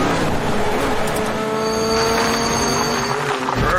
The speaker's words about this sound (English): Look like the car was screaming. Yeah. look at it. A lot of dust.